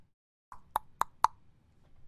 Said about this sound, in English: as Janalia knocks on the door.